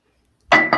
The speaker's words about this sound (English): Oh, that's glass.